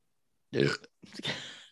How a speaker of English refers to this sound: What? I'm keeping that in. I don't remember what I was trying to say. The burp distracted me, so moving on.